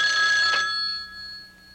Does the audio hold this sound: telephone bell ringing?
yes